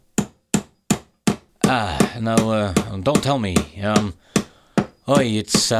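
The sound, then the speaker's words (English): Five sharp, loud hammer blows land in a quick, steady rhythm, each a crisp metallic crack. Then the hammering stops and a man starts talking. “It's the centurion who really knows how to swing a hammer.”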